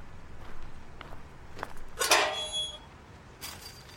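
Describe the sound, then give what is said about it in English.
An old, rusty, unlocked metal fence gate creaks open with a drawn-out, high squeal, surrounded by a few soft footsteps on the ground and a brief scrape near the end. No one speaks. “The old rusted fence wasn't locked”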